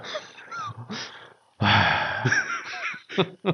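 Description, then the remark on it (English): A voice imitates heavy, labored breathing: a few raspy huffs, then a louder stretch of harsh panting and gasps, with no words spoken. “He's like, breathing hard.”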